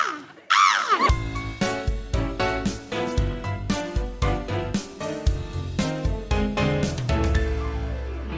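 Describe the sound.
A person imitates birds with a short, loud cawing call near the start, and a steady, rhythmic music track immediately follows and fills the remainder.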